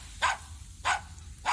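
A dog barks three times in a steady rhythm, each bark short and sharp with even pauses between, moderately loud against a faint background hum, with no one speaking.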